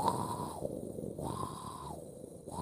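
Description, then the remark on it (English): Someone imitates the breathing-like noise heard from a shower drain: hollow, airy whooshes that swell and fade in a slow rhythm, about two breath cycles, fairly quiet, with no talking. “It's hard to pinpoint exactly where it's coming from, but it sounds like the drain.”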